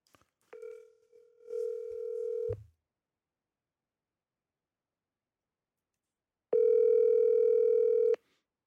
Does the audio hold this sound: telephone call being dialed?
yes